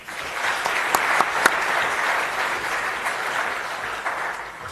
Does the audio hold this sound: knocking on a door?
no